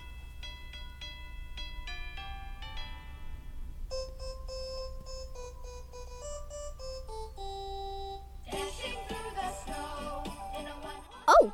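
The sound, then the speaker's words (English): A simple electronic rendition of Jingle Bells plays as a string of bright, beeping tones, like a ringtone or music box, before turning into a busier, fuller stretch of melody near the end. “I was just listening to Jingle Bells.”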